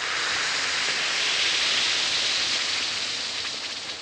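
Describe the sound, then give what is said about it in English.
An Alka-Seltzer tablet fizzing in water, giving a steady, bright crackling hiss that holds evenly for about four seconds, with no voices. “Yes, it's that cheerful Alka-Seltzer fizz.”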